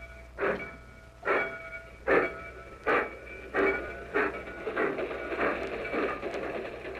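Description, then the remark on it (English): A steam train pulls out of the station, bound for Yuma, Phoenix, El Paso and Houston, its heavy chuffs starting slow and evenly spaced, then quickening and blurring together over a steady mechanical hiss and hum. No one speaks. “Train leaving for Yuma, Phoenix, El Paso, and Houston.”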